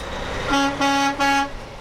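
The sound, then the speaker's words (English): A truck horn blares three times in quick succession, loud, over a steady background of engine and road rumble at a truck stop. No one speaks. “When Pander bought this truck stop in 2014, it came with a griddle for hot dogs and hamburgers.”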